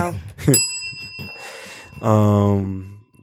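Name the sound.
bell ringing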